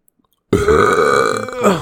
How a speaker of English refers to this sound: Oh, that wasn't a good burp, though, was it? I've done better. That's fucking atrocious from you, man.